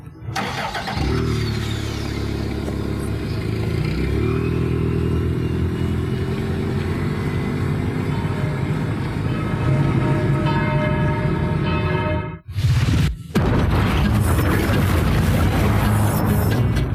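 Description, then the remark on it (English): A car commercial's soundtrack plays loudly: dense music with ringing, bell-like tones over a rumbling engine, cutting out abruptly near the end before surging back. “Guardians of the Car commercial”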